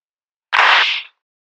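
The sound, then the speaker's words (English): A single loud, sharp hand clap made by people clapping together in unison, with a short bright ringing tail that fades within about half a second. No one speaks. “Okay, sorry, just before we start, that was the best clap we've ever had,”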